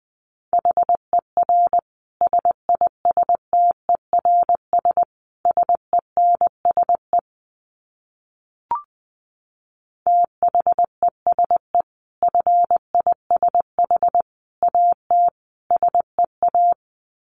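Steady Morse code beeps at a single mid pitch, keyed in quick dots and dashes at 20 words per minute, with one brief click partway through and a pause before the tones resume.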